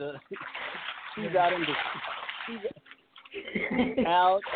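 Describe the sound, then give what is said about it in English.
Water splashes and sloshes from someone swimming in the Pacific Ocean, a steady noisy wash underneath a person talking, rising and falling with the movement. “If y'all hear water in the background, that is the mermaid herself”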